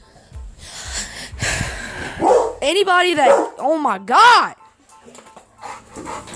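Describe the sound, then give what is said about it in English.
A pet dog barks several times in quick succession, loud, with sharp yelping tones, after a stretch of rustling noise; faint background sound follows. “Anybody that got dogs knows that when they bark, they don't stop because they be fucking aggravating.”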